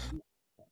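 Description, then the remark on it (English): A single sharp, loud sneeze bursts out, followed after a brief pause by a softer, short throaty sound. “Bless you.”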